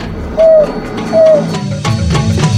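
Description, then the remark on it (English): Two ringing, bell-like "who" calls from a pack animal, used to relocate and bring the pack back together and carrying several kilometers, each a clear, steady mid-pitched tone lasting about a quarter second, spaced apart over a low rumbling background with a few faint clicks afterward. “And the who call, which is this wonderful ringing bell sound, will travel over very large distances, several kilometers at least, and bring the pack back together.”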